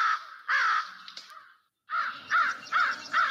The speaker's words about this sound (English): And the first song is actually from an album, …. So everything you hear is birds. Page 118, American Crow.